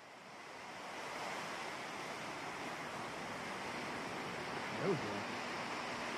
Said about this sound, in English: We got some waves going. We got all the waves. Man, I miss the ocean.